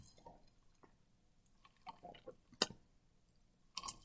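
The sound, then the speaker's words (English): Quiet sipping of a cocktail made with club soda, basil, grenadine and blackberry: a few soft, wet slurps and small mouth clicks spaced out over a few seconds, with a slightly louder sip near the end and no talking. “Let's give it a taste, right?”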